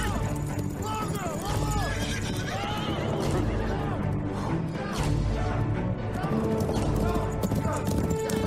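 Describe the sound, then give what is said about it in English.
Western-style music plays loudly and continuously while horse hooves clip-clop in a steady rhythm underneath, with what sounds like a horse whinnying in a dense, busy mix. “I know, weird weird Western music.”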